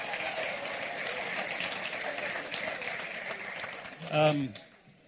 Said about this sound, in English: Would you give our worship team a big round of applause?